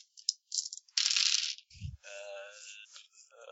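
Dice rolled for a perception check rattle and clatter in quick bursts: a few sharp clicks, a louder scraping tumble, a brief low thump, then a steady ringing, tonal sound as they settle, landing three twos and three ones. No one speaks.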